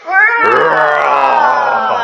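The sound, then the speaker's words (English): A person's voice lets out one long, loud imitation of a lion roar, a sustained strained growl that holds steady for about two seconds before fading slightly. “And when Larry roared, all his friends jumped in surprise and got a bit scared.”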